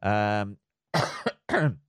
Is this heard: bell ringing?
no